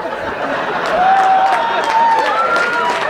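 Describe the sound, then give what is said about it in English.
Audience applause, a dense, steady wash of many hands clapping for about three seconds, with a thin whistling tone rising and falling through the middle of it. “Don't clap him.”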